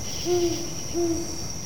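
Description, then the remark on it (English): An owl hoots twice in a steady, evenly spaced rhythm, each call a low, mellow tone, in darkness. A continuous high drone of crickets runs underneath throughout. “Suddenly the owl hooted again and again.”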